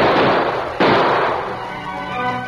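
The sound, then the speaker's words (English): Gunshots ring out, a sharp loud bang cutting through a dense, roaring crackle that lingers and slowly fades, with no voices. The shots are fired in a town near the sheriff's office at a man racing away on the lawman's horse. “Dan Reed and a number of townsmen were near the sheriff's office when Dave raced away on the lawman's horse with bullets flying over his head.”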